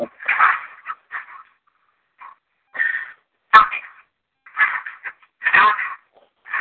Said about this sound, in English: As well as a couple of dogs walking right there right behind her.